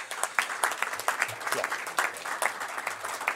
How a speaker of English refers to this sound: So let's start off by giving yourself a round of applause for being here today.